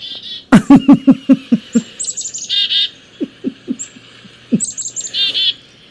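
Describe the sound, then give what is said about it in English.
A phone ringtone imitating a chickadee call plays on its own: a quick run of buzzy, harmonic notes, then high, thin chirps and whistles that repeat in short bursts. “My phone is ringing.”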